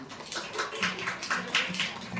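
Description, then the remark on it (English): An audience at a WIM women's event in New York claps and snaps fingers in a loose, scattered patter of sharp bursts, moderately loud and steady for a couple of seconds, with no voices over it. “No joke, some snaps. Some claps.”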